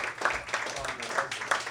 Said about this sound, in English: Give another round of applause